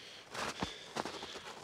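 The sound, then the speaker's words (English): Several heavy, crunching footsteps stomp through snow while someone walks down a snowy hill, uneven in rhythm, with no one speaking over them. “Stomp your feet down.”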